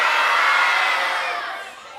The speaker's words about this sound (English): So at the count of three, can you guys all tell me your name at the same time? Sound good? I want you just to yell. I promise you I'll absorb all of your names.